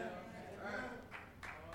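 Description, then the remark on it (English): A single person gives a slow, sparse golf clap: a few soft, spaced-out claps, quiet and thin against a low background murmur. “Thank you for that lonely golf clap.”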